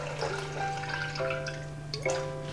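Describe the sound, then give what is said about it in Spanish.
Cold water, 250 of it, pours steadily into a mixing jug while making horchata, for a few seconds, the splashing sound rising slightly in pitch as it fills, over a constant low electrical hum with no talking. “Y por último, el agua, 250 de agua bien fría.”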